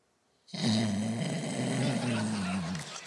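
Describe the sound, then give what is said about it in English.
A person makes a loud, sustained snoring noise with their voice as an impression of sleep apnea, a rough, rattling drone lasting a few seconds that starts abruptly after a brief pause and then cuts off. “That's just snoring. That was just snoring.”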